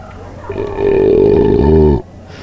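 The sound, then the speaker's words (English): A long, loud belch rumbles for about a second and a half, steady and throaty before dropping lower and cutting off abruptly, with no talking. “rating them with these suds ratings plus our signature belching sounds.”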